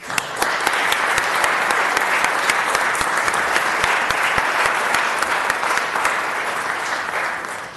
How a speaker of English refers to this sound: All right, one last round of applause.